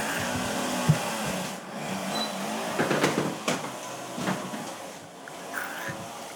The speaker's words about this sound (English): Can I close the door? Yeah, please.